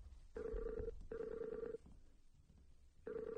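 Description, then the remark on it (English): An electronic ringback tone of an outgoing Skype call to someone in New York City: a steady mid-pitched warbling tone plays in pulses, two long rings separated by a pause, then a third begins, with no voices. “So let's call her on Skype.”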